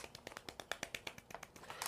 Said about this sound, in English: Round of applause. Guys.